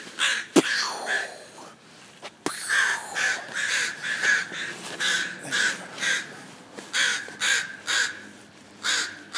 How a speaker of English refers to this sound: Doing fake throwing of rocks at the crows. That's the thing. Every year it's the same. Sort of escalate. I just got winged by the crow.